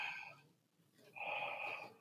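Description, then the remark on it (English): A person imitates heavy, rapid breathing: two loud, airy, hissing breaths in quick succession, the second longer and stronger than the first, with no words spoken. “I did not breathe like this.”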